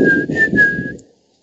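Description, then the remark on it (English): Someone whistles a short melodic phrase from a heavy metal power ballad into a microphone with a pop filter, a few connected notes at nearly the same pitch, with breathy rumble underneath, lasting about a second before fading out. “It's hard to whistle with like a pop filter.”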